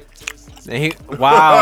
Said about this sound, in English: He like, hey, man, don't be eating no food in the microphone, man. Cause that should be, oh, that's disrespectful.